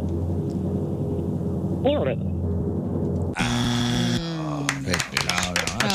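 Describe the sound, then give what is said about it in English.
A short burst of hand clapping breaks out over a noisy background, a quick run of sharp claps lasting a couple of seconds, with voices murmuring underneath. “Don't clap for that.”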